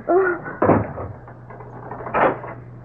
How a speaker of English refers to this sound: Now get into that closet. Oh. Open the door. Inside. Oh.